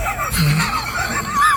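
Someone blows into a microphone, producing a loud, steady gust of breathy, rumbling wind noise that lasts about a second and a half with no talking.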